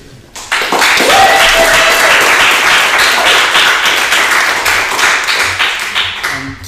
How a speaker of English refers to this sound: Just a room full of clapping people.